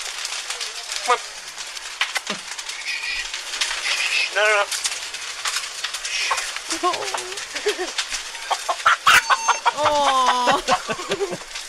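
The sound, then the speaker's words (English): A chicken clucks repeatedly and anxiously over a steady hiss of a crackling, roaring shed fire, with sharp pops and snaps scattered throughout; the bird grows louder and more agitated toward the end. “That was a crackling, roaring fire.”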